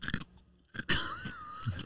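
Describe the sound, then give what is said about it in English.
Loud crunching and chewing of ice cubes from an iced peach green tea right against the microphone, with a few sharp bites followed by wet, grinding mastication and a brief squeaky tone. “I'm going to chew on the ice cubes right into the microphone.”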